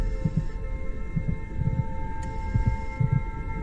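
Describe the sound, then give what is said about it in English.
Soft, low double thumps of a heartbeat pulse in a slow, steady lub-dub rhythm over a constant electronic hum, with no voices. “Feel the slow, steady beating of your hearts.”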